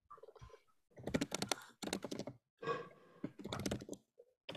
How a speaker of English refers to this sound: I was typing for a second.